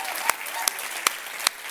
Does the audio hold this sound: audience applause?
yes